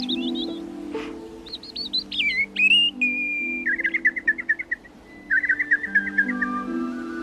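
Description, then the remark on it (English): A person imitates birdsong with clear whistled chirps, quick warbling phrases and rapid trills, repeated over about seven seconds above a low, steady droning tone. “the reason for this is in the formation of my throat, which is identical with that of the bird.”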